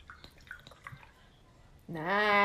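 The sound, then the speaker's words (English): O'Hara's Irish Stout pours into a glass: a few faint drips and clinks, then a loud, steady glugging pour whose tone climbs as the glass fills. “Let's see if I can capture the sound of pouring it.”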